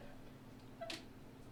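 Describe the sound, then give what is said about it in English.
A single short cat meow, quiet, rising briefly out of a low background hum with no one speaking. “He let the cats out.”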